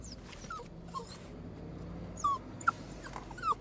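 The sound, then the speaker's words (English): A dog, Skid, whimpers excitedly inside a moving car as it stops or the indicator goes on, letting out several short, high-pitched whines and yips, one sharper than the rest, over a steady low rumble of road noise. “Skid gets really excited every time I stop or put the indicator on because you think it's journey's end.”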